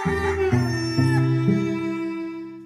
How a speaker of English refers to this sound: And in that moment, he hears a rooster.